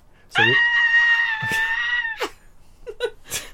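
A woman screams incoherently: a long, loud, sustained scream lasting nearly two seconds, followed by a few shorter yelps and breathy vocal bursts.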